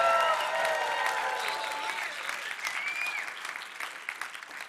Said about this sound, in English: and in a moment I'm going to get them to cheer or shout or clap, I want you to extend our warm greetings to your congregation and wish them and bless them from Grace and Faith here in Tampa. Come on, everyone, make a loud noise.